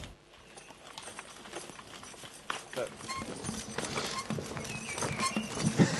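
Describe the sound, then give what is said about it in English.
Two horses, one of them very big, walk along a track in Broxbourne Woods, their hooves clip-clopping in an uneven, overlapping rhythm, with faint voices murmuring in the background. “We just met a couple of horses on the track and are completely unused to the appearance but also the noise of Roman soldiers.”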